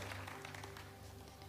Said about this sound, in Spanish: Todos tuvieron una buena Navidad. Aplaude si tuviste una buena Navidad.